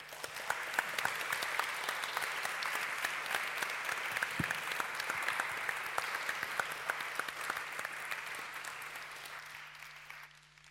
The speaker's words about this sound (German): mich bei allen hier auf der Bühne, auf dem Podium ganz herzlich bedanken für das tolle Gespräch und wünsche allen im Publikum noch einen schönen Abend und einen großen Applaus an unsere Gäste hier.